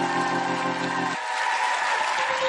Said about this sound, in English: Oh, give Jesus a mighty hand clap.